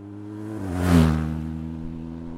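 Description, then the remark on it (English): A motorcycle engine, on a ride retracing the path of wolves from Poland into former East Germany, revs up, its droning note climbing and swelling to a loud peak, then settling into a steady, rumbling idle, with no voices. “A motorcycle quest to try and retrace the path of Germany's wolves, following them westward from Poland into the former East Germany.”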